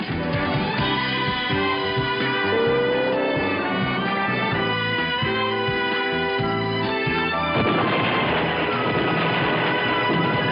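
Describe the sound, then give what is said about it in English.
A loud, brassy TV show theme tune plays with no voices, swelling continuously until a booming explosion behind the show's logo crashes in about two-thirds through, after which the music carries on dense and full. “It had a theme song. And it had an explosion behind the logo.”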